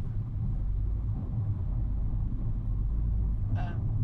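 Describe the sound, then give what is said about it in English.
Steady low road rumble fills a small car's cabin while driving, a constant droning hum from tires and engine with a brief higher squeak or chirp near the end. “See, this is, people just don't respect this car.”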